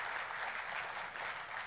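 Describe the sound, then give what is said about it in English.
An audience at Bella Vista claps steadily, a dense wash of many hands with no pauses or talking, holding at an even, fairly loud level throughout, applauding the pastor's completion of five years of ministry there. “I really just told you that so you'd clap.”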